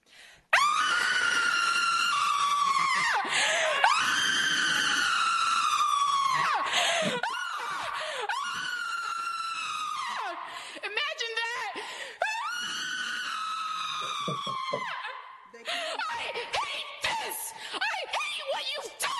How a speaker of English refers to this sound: So I am going to spend the next minute screaming, because that is what is going on in here.